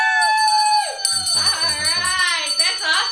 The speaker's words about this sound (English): Which one of you is going to ring the bell? Woo! I'm ringing the bell. All right. So you get to ring the bell.